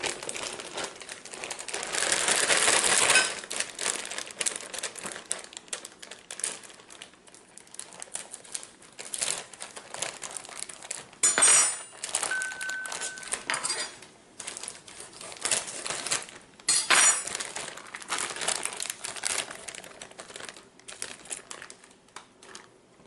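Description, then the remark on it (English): Paper towels crinkle and crumple in bursts as a defrosted 10-ounce pack of frozen spinach is wrung and squeezed in them to get the juice out, fairly loud, with brief pauses between handfuls. “And I'm going to pour it on my paper towels here because I'm going to have to squeeze it out to get all that juice out.”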